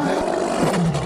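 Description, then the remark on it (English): A loud, drawn-out fart sound effect with heavy reverb, made by farting into a microphone: a low, rasping, roar-like rumble that holds steady for about a second with no talking over it. “All right, I've got the reverb fart ready.”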